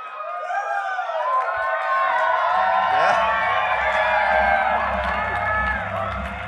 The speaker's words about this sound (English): In my mind, I have not heard anybody louder, even though there were some people that should have got louder applause than me that came here today because it was great.